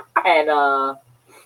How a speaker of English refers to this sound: The turkeys will be on the set. The turkeys have been in the parking lot and around the building every day.